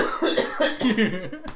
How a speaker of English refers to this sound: Yeah, you've been coughing a lot these past weeks. Are you okay, man? You still vaping? Yeah, man. Like, every episode, I hear coughs.